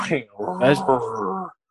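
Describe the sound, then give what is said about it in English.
A man imitates a lion's roar with his voice, a short growling bellow lasting about a second and a half, rough and throaty, then stopping abruptly. “I used to look up YouTube videos of, like, roar. Lions roar.”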